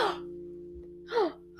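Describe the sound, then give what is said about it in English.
A few short, sharp gasps of surprise from several people in quick succession, breathy, with brief pauses between them and no other talking. “he gasped, and so did other people around him.”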